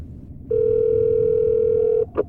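A steady, loud telephone dial tone hums for about a second and a half, then cuts off abruptly, followed by a short click or beep as the call is placed.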